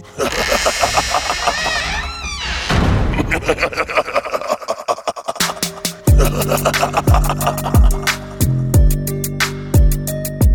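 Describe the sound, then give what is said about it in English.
Heavy wooden barn doors slam shut in a loud series of booming thuds, roughly one per second, each with a deep ringing tail, following a swirling, whooshing tonal stretch. “Let's get these barn doors closed, shall we?”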